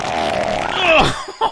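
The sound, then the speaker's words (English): A loud fart sound effect played from a YouTube video: one long, buzzy blast that wobbles and slides downward in pitch for about a second, then two short sputtering puffs, with no talking. “Why do you have 3 hours of fart sounds on YouTube?”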